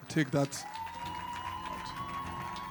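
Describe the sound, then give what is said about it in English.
An audience at LifePoint Church claps and cheers at a moderate, steady level on Father's Day, opening with a couple of short shouts, while a long whistle-like tone rises above the crowd noise. “That's not the kind of clap you clap for fathers.”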